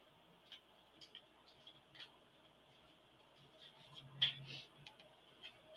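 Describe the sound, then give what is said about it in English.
Quiet shuffling of a deck of cards: soft papery clicks and flutters scattered across a few seconds, with a slightly fuller riffle burst near the end and no voices. “Oh, so I shuffled the card, Sarah, and guess what?”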